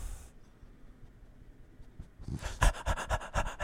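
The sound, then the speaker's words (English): A male dog pants in quick, rhythmic huffs that start after a quiet pause and grow louder toward the end, with no one talking. “He's a man of few words.”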